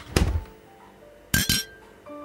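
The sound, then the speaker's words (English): Glasses clink together as eggnog is being fetched: a bright clatter early on followed by two sharper knocks a moment later, then a faint ringing tone lingers as things settle. “Do you want a glass of eggnog? We still have eggnog.”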